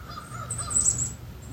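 Wild birds call outdoors in the morning, including a Song Sparrow, little warblers, nuthatches and crows, with crow caws in the distance and higher chirps overlapping over a steady low ambient hum; no one speaks.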